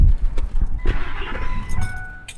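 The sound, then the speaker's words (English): A car engine starts up, with rough clattering bursts of cranking before settling into a steady low rumble with a faint thin whine above it; no one speaks. “Ooh, good engine start noise.”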